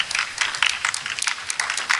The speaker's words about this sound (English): I hear, is it raining or somebody clapping? I think. Oh, there's a couple. There we go. There's a couple. Now it's a roar.